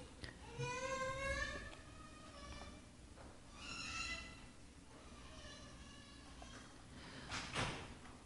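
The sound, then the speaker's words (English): A door creaks open and shut with several drawn-out, squeaky hinge groans, then closes with a soft bump near the end, heard over a low room hum. “Can we close the door?”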